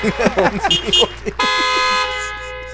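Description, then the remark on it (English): Several car horns blare in traffic at a car driving at 20, long overlapping honks with bright steady tones, loud; a person talks briefly at the start before the horns take over. “All the cars honking.”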